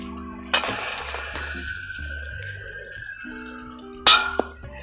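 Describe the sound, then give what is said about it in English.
A disc golf disc slams into basket chains twice, each hit a bright metallic jangle and clatter, the first leaving a long ringing tone that slowly fades before the second crash. “Bang chains.”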